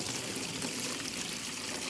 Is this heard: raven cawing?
no